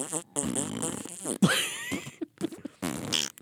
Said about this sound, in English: We should have gone to a showing of Infinity Wars and laid in a sound effect of farts every time someone got dusted.